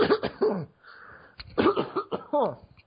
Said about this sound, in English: He's choking. He's choking. And he's faking he's got a cough because he's choking.